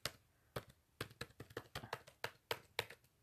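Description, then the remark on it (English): Rapid, irregular clicking of keys on a computer keyboard as someone types in a password, a dozen or so sharp taps in quick bursts, fairly quiet, with no voices. “And y'all can hear me typing”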